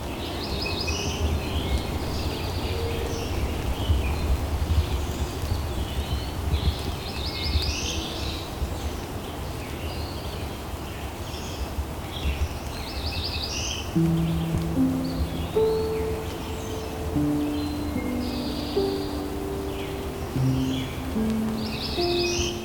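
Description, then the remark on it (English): A Cerulean Warbler, a small sky-blue bird, sings repeatedly over steady forest ambience in Dundas, each song starting with buzzy notes and ending in a quick trill. Partway through, lower-pitched tonal phrases join in alongside the songs. “The song of the species can vary somewhat, but generally it starts with a buzzy sound and ends with a trill.”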